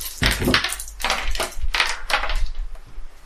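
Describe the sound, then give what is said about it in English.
Black and white dice clattering across a tabletop as several people each roll two dice, a flurry of sharp, bright clicks and rattles overlapping in several bursts, with no talking. “Roll the dice in front of you.”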